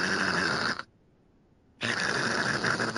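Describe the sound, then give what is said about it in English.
A voice imitates a platypus with two loud, raspy bursts of hissing, static-like noise, split by a brief silent pause of about a second. “You know, some people can actually do the platypus noise. Can you do the platypus noise?”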